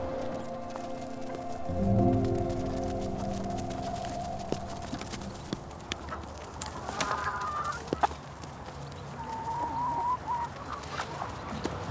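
A chicken clucks and calls over an outdoor farmyard backdrop, on a site keeping about 65 egg-laying chickens, with scattered hoof-like clops and a low droning hum underneath; no one speaks.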